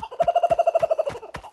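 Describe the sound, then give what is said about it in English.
A kookaburra, caught in a plastic bag beside the tracks, lets out a quick, loud cackling call, about a dozen rapid, evenly spaced notes that trail off, with a few sharp knocks in the background. “Ranger Jill spotted the kookaburra by the side of the tracks.”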